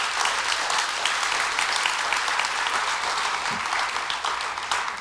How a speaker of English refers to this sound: If you believe that today, come on, somebody, help me out. Give God a big clap and thank him for what he's doing.